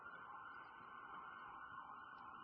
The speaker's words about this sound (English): Let's hold on a second. How many is that now? Two or three? Sirens?